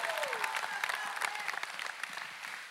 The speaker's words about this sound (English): Give a Lord a clap and a shout.